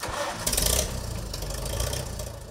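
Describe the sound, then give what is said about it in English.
A Farmall 350 tractor engine in Kansas catches with a brief loud surge, then settles into a steady, rumbling idle, its low throbbing beat continuing with no one speaking. “We're headed to Kansas to visit with Melvin Snoke about his Farmall 350.”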